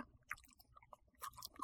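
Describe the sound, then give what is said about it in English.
Crunchy chewing of a hard Butterfinger candy bar, with irregular cracking bites that grow louder and denser toward the end. No talking. “Instead of crunch, I did not expect it to be this hard.”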